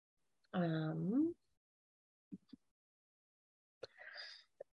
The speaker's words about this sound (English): Pardon the coughing.